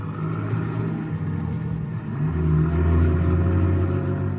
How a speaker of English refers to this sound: Then somebody enters the garage, eases into the car, and we start up. I get a look at the back of the driver's head.